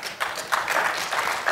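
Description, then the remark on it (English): A brief, thin patch of weak applause from a church audience during a sermon: a few scattered hands clapping unevenly at a modest level, with a faint murmur of voices beneath. “That was a kind of a weak applause, but I completely understand.”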